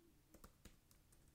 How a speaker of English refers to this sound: Hear me typing. Cluche goal. Whoa. Okay. I typed in Cluche goal.